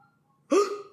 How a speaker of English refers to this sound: The elusive, screaming dead dog. Doesn't it sound like an alien from Signs is taking him? Please bark more.